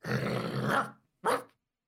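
A dog, Fifi, snarls loudly for about a second, a rough, sustained growl, then lets out one sharp bark after a brief pause, with no talking.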